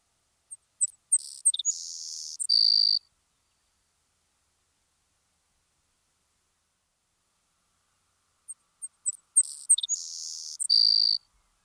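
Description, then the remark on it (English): A savanna sparrow sings twice, each song a few thin, high ticking notes that run into a dry, insect-like buzzy trill. The songs are clear, with a long silence between them. “In the meadows and low wetlands, the savanna sparrow is met with and may be known by its fine insect-like song.”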